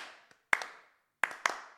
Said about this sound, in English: And you got to clap along with it. They're giving you a clap. Yeah. It's like the double clap, right?